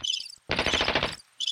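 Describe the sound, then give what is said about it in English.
A loud, rapid rattling burst of gunfire sound effect lasts under a second, flanked by thin high-pitched chirping before and after. No one speaks. “That is the worst gunshot.”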